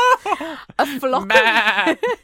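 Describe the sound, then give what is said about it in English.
A few bleats from a flock of Jacob sheep on the Dean's Field at Chester Cathedral, Chester. The longest is a wavering, quavering cry in the middle, with shorter bleats before and after it. “Chester Cathedral sheep removed after council hygiene concerns.”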